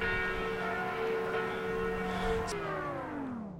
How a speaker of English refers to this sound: We can see the whole city from up here. Yeah. And you can hear it too. Yes. Church bells ringing out over a romantic cityscape of tiled roofs and ancient towers.